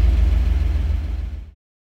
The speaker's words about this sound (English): So that was us driving around in the Boss 429